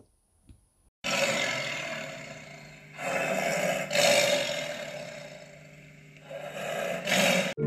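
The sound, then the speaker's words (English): A tiger roars loudly, a run of long, rumbling bursts following one another almost without pause after a brief quiet start, with no talking. “I might pounce and roar. I've heard sometimes that's what tiger days are for.”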